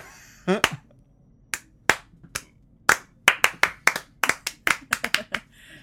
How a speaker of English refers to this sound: The turbo lift opens. The body falls out, and then everybody looks shocked. Then slow clap.